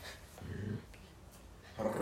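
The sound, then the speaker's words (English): Two dogs about to fight growl in two low, rumbling bursts, one short and one starting near the end, with a quieter stretch between and no talking. “Oh, they're about to fight.”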